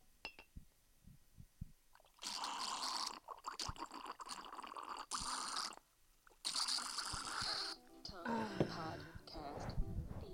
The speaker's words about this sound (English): I'm about to pour myself a little glass of wine. Let's see if I can get this situated. Hold on. Here we go.